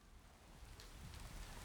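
Heavy rain pours steadily onto a city street at night, a continuous soft hiss with low rumbling underneath, fairly quiet and even throughout, with no voices.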